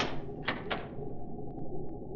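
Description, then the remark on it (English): Two sharp metallic clicks of a cabin door being locked aboard a Navy cruiser, followed by a few fainter ticks, over a low steady background hum with no one talking. “You may lock the door now.”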